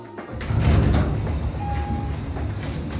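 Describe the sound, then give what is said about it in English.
A heavy mechanical door rumbles and slides open with a low, grinding roll and a brief tonal whine, loud, with no one speaking. “Just open the door, asshole.”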